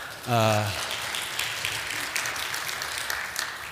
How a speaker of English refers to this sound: Enjoy your clapping now. Enjoy your clapping now.